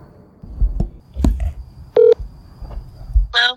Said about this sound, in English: We do have definitely some more show to get to, so why don't we give your daughter a call? Okay, let me give her a ring-a-ling here. A little ring-a-dingy. Ring-a-dingy.